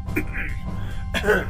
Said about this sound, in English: I know you pretty well by now, and that's your nervous cough.